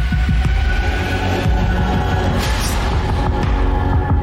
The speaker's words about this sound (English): God, listen to your heartbeat. I want to hear your heart.